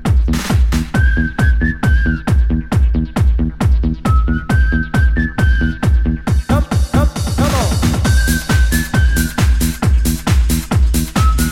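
An upbeat dance song from summer 1999 with a steady, punchy four-on-the-floor beat and a bright whistled melody carried over the top, loud, with no voices.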